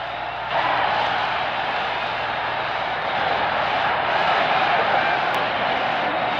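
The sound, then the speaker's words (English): A stadium crowd roars after Ken Boyer's grand slam home run for the Cardinals against New York in the sixth inning of the 1964 World Series, a dense, steady wall of cheering that swells in at the start and holds loud and unbroken for several seconds, with no voices speaking. “It is a home run. Listen to the crowd.”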